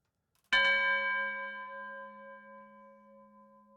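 A single bell is struck once, producing a bright metallic clang with a long, ringing decay of steady overtones that slowly fades over a few seconds, heard alone without any voices.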